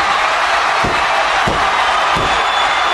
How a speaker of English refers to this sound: Crowd is going crazy right now.